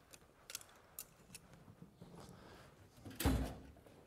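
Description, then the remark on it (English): A drawer opens and closes: a few light clicks and rattles, then a louder sliding clunk near the end, with no one speaking. “Learn your drawers, too. There we go.”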